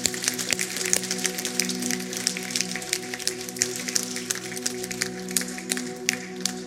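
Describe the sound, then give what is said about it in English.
A crowd at a church service claps in a steady, dense round of applause after a prayer, a continuous patter of many hands over a low sustained tone, with no voices. “Somebody give them the biggest round of applause you can give them.”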